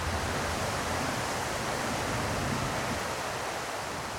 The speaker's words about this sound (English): inspires them to creep into the innermost vault of vaults, where Slurp nudges the door open with the sound of rushing water.